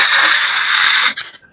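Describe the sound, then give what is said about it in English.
A voice imitates how audio would sound in lower quality, a flat burst of static: a loud, steady hiss held evenly for about a second, then cut off abruptly, leaving faint rustling. “It'd just be one static line.”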